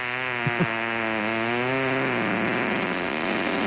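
A long, loud fart sound effect: a sustained buzzy, rasping blast with a slightly wavering pitch, two quick pops early on, and a rougher sputter toward the end. No one talks.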